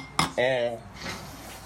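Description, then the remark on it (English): One sharp, dull tap of plastic cups knocked together in a toast to 2019, quickly followed by a brief tonal, voice-like sound, then quiet murmuring. “I got a plastic cup. My friend in here. We're going to click them together.”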